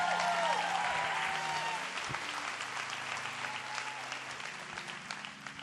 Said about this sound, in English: Let's give Jesus another round of applause. Come on.